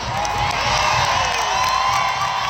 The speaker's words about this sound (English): More than 22,000 fans at the soccer stadium cheering a goal by the U.S. women's national team. The U.S. defeated Ireland 1-0 in a tune-up for this year's Women's World Cup. It was the first contest for a national team at City Park.